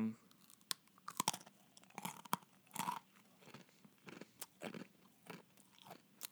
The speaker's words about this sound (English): Like for those of you listening, it's a waffle-shaped cookie meant for a dog. So here we go. Crunch, crunch.